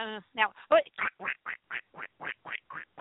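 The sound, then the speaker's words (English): A person's voice imitates a duck, giving about a dozen nasal quacks in a quick, steady rhythm, fairly loud at first, then gradually softer. “Do you want to hear my duck sound?”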